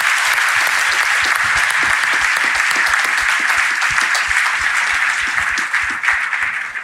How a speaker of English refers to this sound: All right. Well, thank you guys so much for being here. We really appreciate this. Can we give everyone a round of applause?